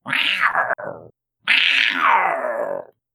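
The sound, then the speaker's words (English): A person voices a mountain lion growl: two loud snarling bursts, the first short with a brief catch, the second longer and sliding downward in pitch before cutting off. “And anyway, so I thought, well, just a mountain lion kind of sound.”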